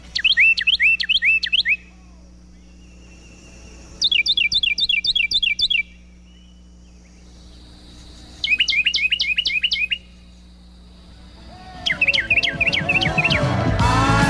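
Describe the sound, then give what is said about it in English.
A male Carolina wren sings four loud, ringing bursts, each a rapid string of repeated rolling phrases, separated by short pauses, with a faint low hum in the background and no talking. “Now for that Carolina Wren song, performed only by the male, by the way, and representing one of the loudest songs per volume of any bird.”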